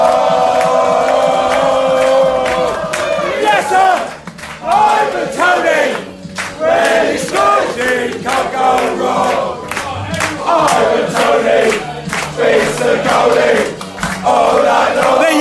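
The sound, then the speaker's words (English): A large crowd of football fans at the Globe chants the Ivan Toney song together at about 2 o'clock in the afternoon, loud and sustained, with rhythmic bursts of massed voices and shouts rising and falling throughout. “Ivan Tony song as well.”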